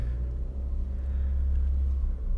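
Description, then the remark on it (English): A car engine idles in a Wendy's fast-food drive-through line with a steady, deep low rumble that holds constant throughout, with no voices and no change in pitch or loudness. “And why are they all in the Wendy's drive-up?”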